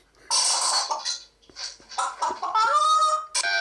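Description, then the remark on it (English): A parrot mimics a hen's clucking in a run of loud, squawky clucks and cackles, uneven in rhythm with brief pauses, ending in a drawn-out cackle. “Yeah, it's a parrot pretending to be a chicken.”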